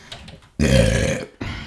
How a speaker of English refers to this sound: Oh, excuse me. I beg your pardon. Did I belch? Did I let out a bit of air out of my That wasn't from my digestive system. That was wind coming directly out of my soul.